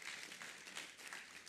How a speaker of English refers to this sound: God bless you. Please clap for them. Clap for them.